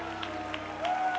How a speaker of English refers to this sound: Everybody clap your hands unto the Lord. And shout unto God with a voice of triumph.